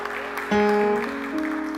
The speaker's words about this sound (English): Well, come on, give God a hand clap of praise for that.